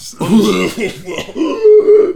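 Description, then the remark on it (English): A voice imitates wrestling manager Paul Bearer spluttering and coughing as he sells after being laid out by the Undertaker at the end of a pay-per-view: a run of rough, gurgling chokes and throaty coughs over about two seconds, loud and strained, with no words spoken. “Taker lays out Bearer at the end of a pay-per-view, and the camera zooms right up on Bearer as he's selling, and you can just hear him spluttering and coughing.”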